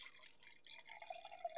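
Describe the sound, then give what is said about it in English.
Quiet pour of rosé wine from a half-finished bottle into a glass, a steady bubbling splash whose pitch rises as the glass fills over a second and a half, with no talking. “For SMR sakes, let's pour it up.”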